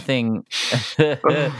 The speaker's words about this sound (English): I'm just yawning.